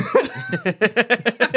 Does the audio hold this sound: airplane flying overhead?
no